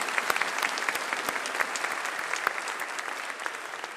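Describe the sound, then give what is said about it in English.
A crowd claps steadily for several seconds in a round of applause for the dads, a dense wash of overlapping handclaps with sharp individual claps popping out, loud and sustained without fading. “Let's give our dads a round of applause today.”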